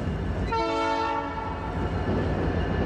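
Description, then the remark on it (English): A train rumbles steadily along the tracks while its horn sounds one long, loud, multi-tone blast that fades out, leaving the continuous rolling rumble. No one speaks. “As a fix to this, I started listening to white noise audio tracks to fall asleep. My sound of choice, of course, trains.”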